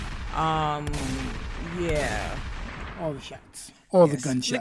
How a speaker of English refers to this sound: All the gunshots.